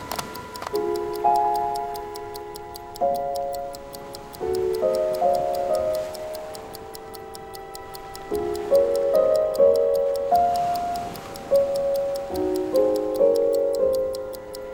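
A phone ringtone from the phone of Jamie, Arthur Muldoon's assistant, plays a looping melody of clear, stepping electronic notes over a steady, clock-like ticking beat, moderately loud and continuous for about fifteen seconds, with no one talking.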